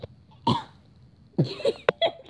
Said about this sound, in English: decided to cough in the middle of talking every single time. I'm sorry.